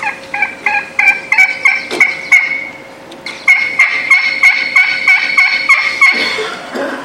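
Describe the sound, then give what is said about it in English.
Many wild turkeys gobble loudly in quick, overlapping bursts, two long volleys of rapid rattling calls separated by a brief pause, clear with no talking. “So we went, I peeked around the corner, and there's just turkeys loaded down there, and you can watch this video.”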